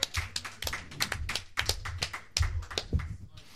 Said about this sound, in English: They're clapping like the Joker.